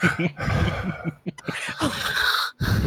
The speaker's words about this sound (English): You were muted, and yet I could still hear you breathing heavily.